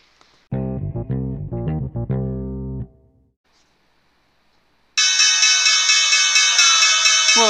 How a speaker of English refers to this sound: Closing bell.